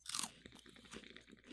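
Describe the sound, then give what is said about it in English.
A loud crunch as someone bites into a crisp cannabis-infused shrimp chip, followed by a quick series of smaller crackling chews in an uneven rhythm, with no talking. “I specifically really love these cannabis infused shrimp chips. I want to try one. I am going to do an ASMR crunchy.”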